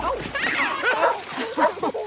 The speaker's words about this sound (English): All right, get out. Get out, dog.